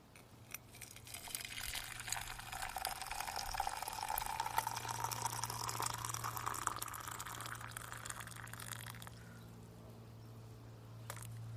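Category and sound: household object, water being poured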